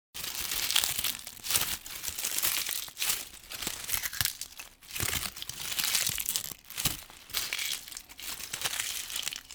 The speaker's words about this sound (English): It's one of my favorite sounds in the fall, crunching leaves. Do you ever go out of your way to step on an especially crunchy-looking leaf when you're out for a walk?